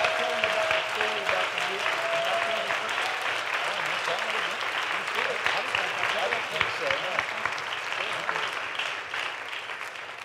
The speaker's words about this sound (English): Y'all give the Lord a hand clap of praise.